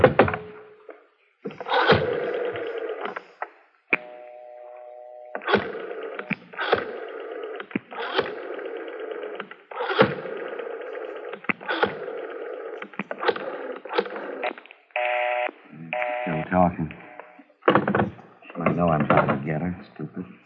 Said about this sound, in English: All right, go ahead. Dial 9 to get outside, Garvey.